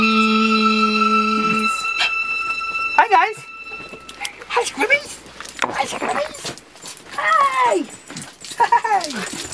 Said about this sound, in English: Puppy!